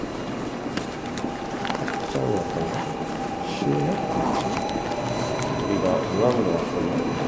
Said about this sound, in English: We are walking down into the subway, leaving the World Cup Stadium stop. Which is also dope that it's a whole stop.